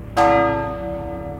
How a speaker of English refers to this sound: The clock tower bells rang out that it was noon